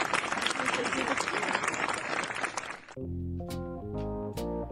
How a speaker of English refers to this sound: Jennifer Benz, you get in-house applause for being here.